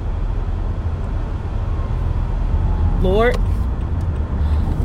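Steady, loud road rumble while driving on a narrow road behind a semi truck as an ambulance is coming, with a brief rising tonal whine cutting through the engine and tire noise near the end.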